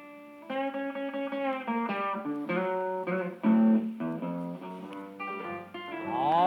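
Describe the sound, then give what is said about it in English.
A gritty, overdriven electric guitar in an early blues recording, showing the beginnings of guitar distortion, plays a blues line of sustained, buzzing notes with harmonic-rich tone, ending on a bending, rising phrase; no voices are heard. “There it is. The beginnings of distortion.”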